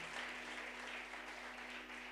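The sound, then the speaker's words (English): A church audience claps their hands for Jesus in steady, dense applause, a continuous crackling wash of many overlapping claps at an even loudness, with no voices standing out. “Can we clap hands for Jesus one more time?”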